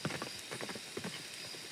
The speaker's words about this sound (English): They hear a galloping not too far away. They keep walking. The galloping continues and then stops.